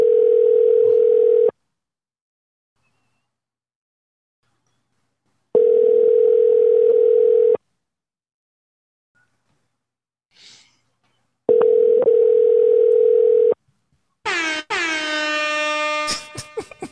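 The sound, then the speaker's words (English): A call to a man's personal phone line rings back three times without being answered, each long steady tone followed by a few seconds of silence, then a short, harsh electronic burst cuts in at the end. No one speaks. “We dialing his personal line for this.”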